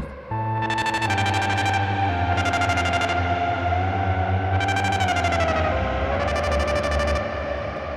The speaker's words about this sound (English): Let me add that reverb again. Maybe it'll sound cooler. Yeah, it actually does.